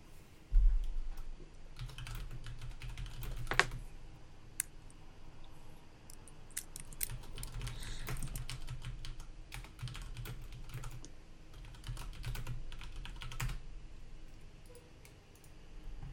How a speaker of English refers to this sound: Okay, give me 3 more minutes to finish typing some stuff up, and then we can start.